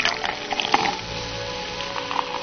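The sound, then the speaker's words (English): Liquid pours steadily into a glass for a couple of seconds, a continuous trickling splash with a few small bright clinks and bubbles along the way. “Yes, I'll pour you a glass.”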